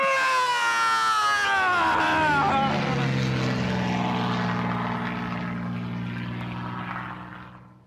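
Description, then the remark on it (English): A propeller airplane drones loudly overhead, its engine pitch sliding downward as it passes, then settling into a steady low hum that slowly fades toward the end. “An airplane ran into her eye!”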